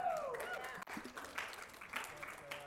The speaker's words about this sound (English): Yeah? It's worth clapping. It's worth clapping.